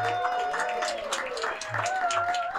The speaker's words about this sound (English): We are so happy today to be recording this live at the Waypost on North Williams. We can have applause. We have an audience here, which is...